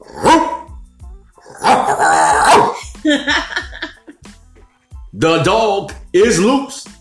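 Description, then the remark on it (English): A dog barks and growls in several loud bursts, with short gaps between the rough, throaty outbursts. “They open the gates. That's right. And let the dog out.”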